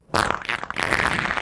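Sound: fart sound effect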